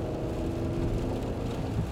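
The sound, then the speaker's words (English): A car engine drones steadily, a low rumbling hum with faint tonal whine above it, holding at an even, moderate loudness throughout with no voices. “The engine has grown louder.”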